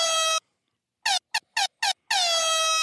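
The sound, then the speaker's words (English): A loud air horn blares, cuts out, then fires four short stuttering blasts before a final long sustained honk, all brash with no voices. “Isn't that air horn also slightly off-key?”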